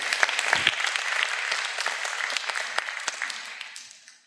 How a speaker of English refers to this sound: Great, great. Thank you. Give those folks a round of applause.